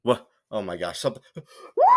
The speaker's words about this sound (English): Sorry, I needed to scream into my emotional support blanket after looking at the Lions' score again.